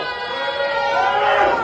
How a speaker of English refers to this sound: So you can hear the people who are eating there start booing him to basically, you know, get the hell out of there. They don't want this person there.